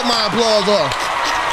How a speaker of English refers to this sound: Do not cut my applause off.